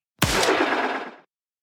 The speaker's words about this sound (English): The gunshot rings out.